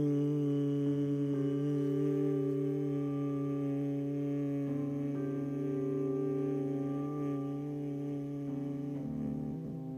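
A person hums on a long exhale after inhaling through the nose, as a breathing exercise; the steady hum holds for about ten seconds, shifting pitch slightly partway through and again near the end, with no talking over it.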